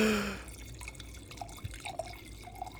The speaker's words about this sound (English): But, Dad, why don't you give our most mouthy backseat driver his wine pour? Here you go,